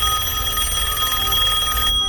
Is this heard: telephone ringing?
yes